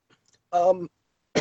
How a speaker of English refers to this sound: excuse the coughing.